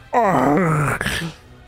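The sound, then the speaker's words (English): A voice imitates a pained creature's moan as the creature is hit in the shoulder and seared by light, a single drawn-out wailing groan that slides downward in pitch, loud, then trails off into a short breathy tail. “As it hits, you just hear a oh, instead of the regular sound.”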